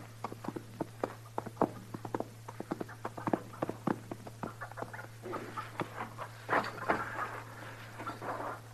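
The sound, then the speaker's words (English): Horse hooves clip-clop in a steady run of sharp knocks, fairly quiet, over a constant low electrical hum with no one speaking. “Put the horse away and get in the house.”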